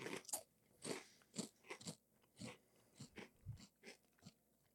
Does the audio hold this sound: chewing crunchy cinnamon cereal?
yes